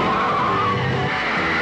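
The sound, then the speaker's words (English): A car skids to a stop, its tires letting out a loud, sustained screech with engine rumble underneath, lasting under two seconds, with no voices. “Stop the car! Oh, please stop the car!”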